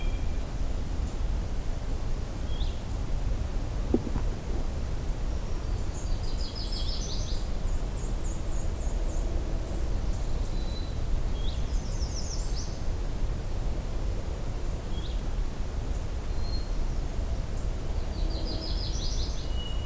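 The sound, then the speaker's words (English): A blue-headed warbler sings short, high, buzzy trilled phrases every few seconds, with scattered thin chirps between, faint over a steady rushing hiss of background noise. No one speaks. “Turning here a blue-headed warbler.”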